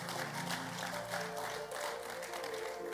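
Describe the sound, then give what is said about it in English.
A large church audience claps together in praise of the Lord during a sermon, dense, steady applause that stays fairly loud throughout, with a faint sustained musical tone humming underneath. “Give the Lord a mighty clap of praise.”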